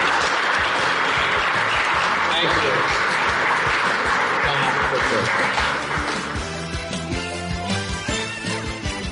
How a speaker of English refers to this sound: And last but not least, let's give a big round of applause to David Stern. Thank you, David.